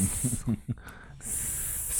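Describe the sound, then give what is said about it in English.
A person imitates a snake's hiss, a steady breathy hiss broken by a few short voiced sounds, then resuming in a long sustained hiss. “Snake.”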